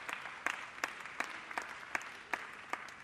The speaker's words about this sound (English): So thank you all very much. Let's have a nice round of applause for these guys.